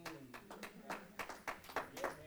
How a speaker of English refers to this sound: Oh, that's a good place for giving Jesus a hand clap offering, ain't it?